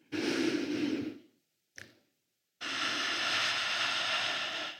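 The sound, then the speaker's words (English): A group breathes together twice in a guided exercise: a long, airy inhale, a brief pause with a short click, then a broad, sustained exhale from many people at once, fairly loud. “So in two, we're going to take an inhale and exhale together, and we'll do that two times.”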